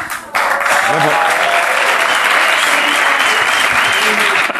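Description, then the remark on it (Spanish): An audience breaks into loud, sustained applause, dense clapping that starts abruptly and continues steadily throughout without letting up. “La gente que quiere aplaudirlo todo.”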